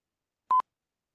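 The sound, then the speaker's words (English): A single short electronic beep, a clean steady mid-high tone lasting about a tenth of a second, surrounded by silence with no voices. “You hear beeping?”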